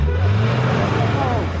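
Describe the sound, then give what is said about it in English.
Motorbike traffic passing on a street: a loud, continuous low engine drone with a rising rev partway through, steady throughout the short stretch. “There is a motorbike everywhere you look.”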